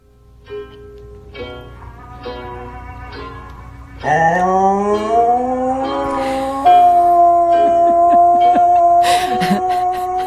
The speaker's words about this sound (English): That's an Australian shepherd getting his howl on.